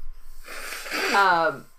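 A woman blows her nose once: a breathy, rushing burst of air lasting about a second that ends in a short, buzzing honk before fading out.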